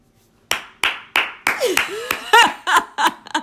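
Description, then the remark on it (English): Crisp hand claps from one person, about a dozen in a steady, slightly quickening rhythm, with some brief vocal sounds like laughter mixed in partway through. “So, get a partner that's going to clap for you when you're just sharing your heart.”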